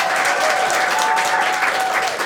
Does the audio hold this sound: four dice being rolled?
no